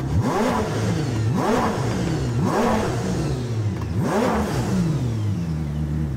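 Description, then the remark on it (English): A car engine is blipped and revved up repeatedly while its data is logged, its pitch climbing and dropping in four loud surges over a steady mid-range drone, continuous with no talking. “He's just revving it up.”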